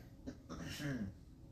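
coughing

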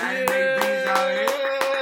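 people clapping

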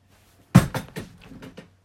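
chair breaking

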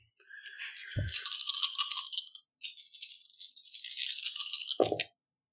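dice rolling

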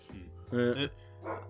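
dog barking and whimpering

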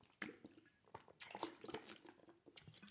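sipping and swallowing water

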